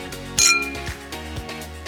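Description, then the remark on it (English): A single bright clink of wine glasses touching in a toast rings out near the start, its shimmering tone fading over steady, soft background music with a rhythmic low beat. “Now that's worth raising a glass to, so grab your favorite vino and join us.”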